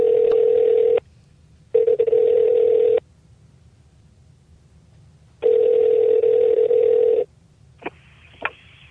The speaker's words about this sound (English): He is across the pond. So why don't we dial him up now? Let's do it.